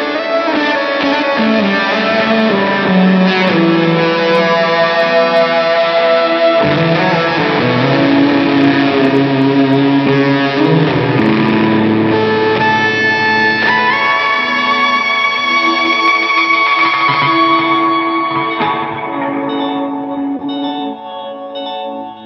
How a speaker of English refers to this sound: But it's a pretty simple setup where it's just, you know, a delay, a reverb for a space, fuzz, and then a volume. But with those things, I can create, like, entire worlds of sound.